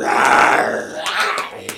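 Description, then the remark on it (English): Men's voices imitate an animal growl, a rough, sustained, throaty rumble lasting under two seconds, fairly loud, tapering off with a few faint clicks at the end. “Okay, now let's hear a growl.”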